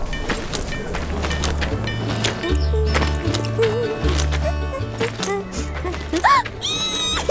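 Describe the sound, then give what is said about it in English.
Horse hooves clip-clop in a steady rhythm with a low background of music, then a horse gives a high, wavering neigh near the end. “And the horses! And the cowboys!”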